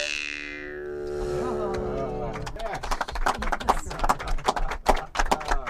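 Many horses' hooves clip-clop in a fast, busy, overlapping patter as a herd moves among hills, starting a few seconds in after a sustained tonal sound and continuing loud.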